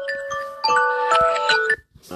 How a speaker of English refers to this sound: So there goes my alarm letting me know it's 9:30 a.m. Eastern Standard Time. Letting me know that the markets are now open.